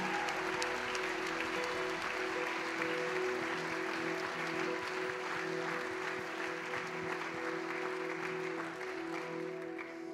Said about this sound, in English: In this moment, it would be wise of us to give Jesus a round of applause and worship and thanks.